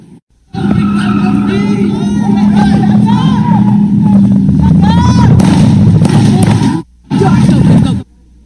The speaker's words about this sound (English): You can hear those shots going off in that video. The COIN 6 team was there when the shots were fired from a car as it sped away.